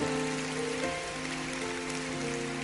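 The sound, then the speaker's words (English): An audience at a church impartation service claps steadily, a dense, continuous patter of many hands, with sustained musical tones humming underneath throughout. “Clap your hands because you will become.”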